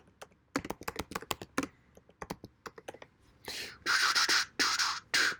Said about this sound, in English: You be sounding official typing over there. Hey, I try. I type in All-Star list and it took me to Texas.